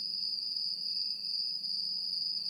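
Crickets chirp in a steady, shrill, unbroken drone, a high insect trill holding constant throughout with a faint low hum beneath and no voices.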